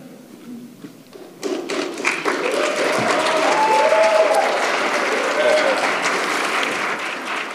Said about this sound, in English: Stop clapping.